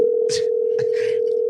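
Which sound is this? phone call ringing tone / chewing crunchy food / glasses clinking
phone call ringing tone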